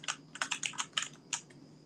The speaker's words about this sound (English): can your keyboard be any louder?